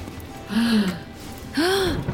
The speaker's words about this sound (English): Everyone who's gasped and hasn't gasped in this room, this person's been poisoned.